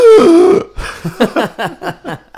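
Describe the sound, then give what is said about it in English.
A voice imitates a woman's sudden sharp gasp that comes with no warning: a loud, high, strained vocal burst lasting about half a second, followed by a string of seven or so short, rhythmic breathy pulses. “So she just literally gasps. Just, no warning, she just suddenly go...”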